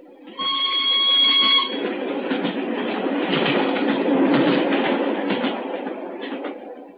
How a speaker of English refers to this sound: As we hid behind a pile of luggage at Canterbury, we saw the single carriage of the special go thundering past us.